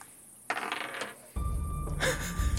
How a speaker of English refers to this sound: All right. I will roll the dice.